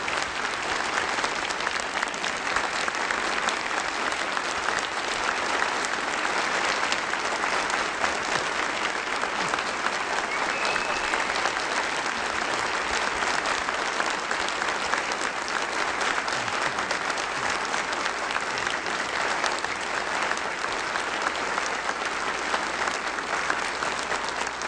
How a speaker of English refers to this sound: But would you please say thank you with your round of applause.